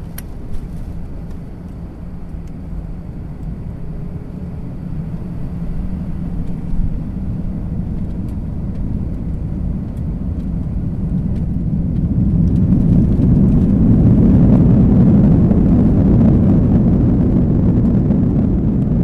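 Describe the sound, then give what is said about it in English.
An airplane taking off on a flight to Washington, D.C.: a steady low engine rumble and hiss that swells into a louder, fuller roar partway through and holds there, with no voices. “So sit back, relax, while we begin our trip by flying to Washington, D.C.”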